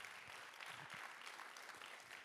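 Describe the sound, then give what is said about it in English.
An audience claps hands steadily, a dense wash of many overlapping claps with no clear rhythm, loud and sustained throughout without any voices over it. “Clap your hands if you believe that in this house.”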